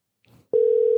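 A faint, brief clatter is followed by a loud, steady electronic telephone tone as a call is dialed, holding unbroken at one pitch until the end, with no voices.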